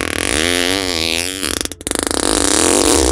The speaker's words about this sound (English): I'm going to just play this fart now